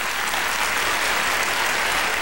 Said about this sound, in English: And John Travolta in Saturday Night Fever. And you hear the applause going for John Travolta because he was amazing and he was there.